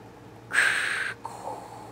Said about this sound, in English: This is going to be Darth's breathing apparatus when he goes to bed at night. It's a sleep apnea mask, basically.